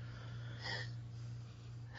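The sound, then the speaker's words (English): Two short, breathy sniffs as a man sniffs himself while wearing Paco Rabanne 1 Million cologne, one near the start and another at the very end, over a low steady hum with no talking. “Dude, I'm literally, like, sniffing myself right now.”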